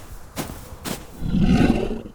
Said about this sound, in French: Et puis, j'entends du bruit derrière moi. Il y a quelqu'un dans l'arbre. J'appelle mon oncle. Est-ce que c'est lui? Je regarde mieux. Je n'en crois pas mes yeux. C'est un ours.